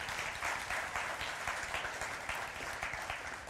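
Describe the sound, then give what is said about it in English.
A church audience applauding steadily, a dense, continuous wash of many hands clapping at an even loudness throughout, with no voices standing out. “Can you guys just clap right now?”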